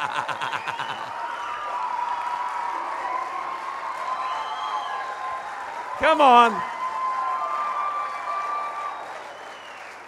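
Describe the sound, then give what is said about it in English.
A large crowd claps steadily throughout, celebrating a couple's engagement announcement, with cheering voices mixed in and a brief loud shout near the middle rising above the sustained applause. “Stand up, they can move, clap.”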